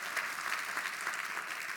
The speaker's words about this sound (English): So again, it's a round of applause for our volunteers. Thank you.